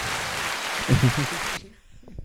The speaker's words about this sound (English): Sounds like rain. It's applause. I can't stand rain. It's like rain.